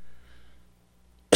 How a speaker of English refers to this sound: That was, I haven't done the Cheney in a while. That got me a cough there.